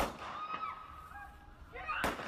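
Two sharp gunshot cracks about a second and a half apart, as a suspect fires a snatched gun at a San Bernardino County Sheriff's deputy during a struggle, captured on a cell phone with a thin, boxy quality, with strained voices and commotion heard around them.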